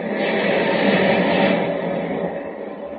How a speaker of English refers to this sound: As a thunderous wave crashes down on the battered decks of the Clara M, Superman, returning from Metropolis, flies low over the turbulent sea.